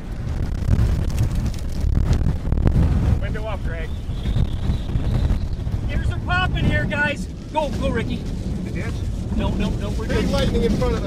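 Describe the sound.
Strong storm wind roars steadily and loudly around a vehicle with windshield wipers, with a thin, high whistle rising above it for a few seconds, during a storm with lightning. Indistinct voices come and go beneath the gusting rush.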